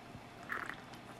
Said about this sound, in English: Sipping my beer here.